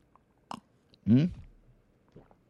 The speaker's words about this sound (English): When you get over there, you can find these really nice Sword of the Spirit podcast coffee mugs, of which I have right here, and I'm going to take my traditional sip and slurp.